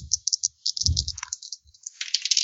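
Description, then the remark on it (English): A d12 and a d8 are rolled, rattling and clattering across a surface in quick bursts of sharp, bright clicks, with a few dull low thumps as they land, for a total of six. Nobody speaks. “Not a stellar roll for a d12 plus a d8.”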